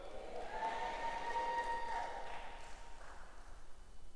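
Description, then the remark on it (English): An audience claps for the ladies who came to sing, in a dense, steady wash of applause lasting several seconds, with a faint sustained tone, like a held note, riding above the clapping. “I mean, these ladies who came here to sing, we are clapping for you.”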